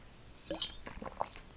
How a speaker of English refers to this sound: sorry, I was drinking water.